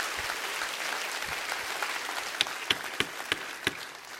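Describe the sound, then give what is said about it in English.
An audience claps hands in worship of God during a church sermon, a dense, steady patter, with several sharper, louder individual claps standing out near the end. No one speaks. “Clap your hands all over this house and worship God.”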